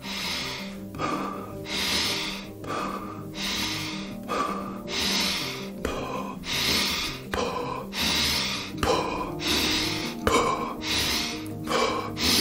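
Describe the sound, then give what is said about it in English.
Rapid, deep breaths repeat in a steady rhythm during the third round of a breathing exercise, each forceful inhale drawn deep into the belly and chest followed by a quick exhale, loud, with soft music playing underneath. “Increase your breathing pace even more. Inhale deep into the belly, into your chest, and let go.”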